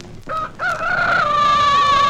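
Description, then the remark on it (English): A rooster crows loudly, played back three times lower in pitch than usual: a short opening note followed by a long, sustained cock-a-doodle-doo that holds steady to the end. “Oh, it's a rooster crowing.”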